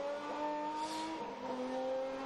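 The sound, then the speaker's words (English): A race car engine roars steadily, its buzzing pitch shifting as the third-place car, refuelled with its engine running, pulls away and accelerates out of the pit lane, with no voices over it. “Engine still running, but don't worry about that. It's allowed.”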